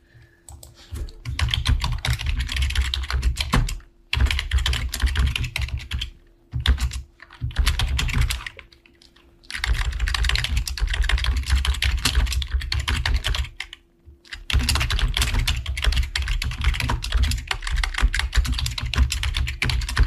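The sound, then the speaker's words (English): Rapid, continuous clattering of fingers typing on a computer keyboard while tweeting, dense bursts of clicks broken by a few short pauses, with no voices. “I'm tweeting.”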